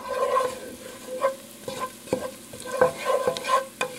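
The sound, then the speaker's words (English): Garlic, 2 teaspoons of cumin and about 1/2 teaspoon of chili powder sizzle steadily in a hot pan, a constant crackling hiss broken by several sharp scrapes and knocks of a utensil stirring them, clear, with no voices. “Let that sizzle for about a minute.”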